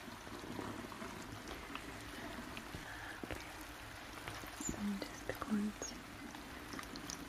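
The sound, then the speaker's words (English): Water runs steadily from a tap that has been turned on, a continuous hissing splash, with a few brief louder knocks and splashes near the end. “Turn on the water.”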